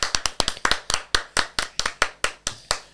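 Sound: applause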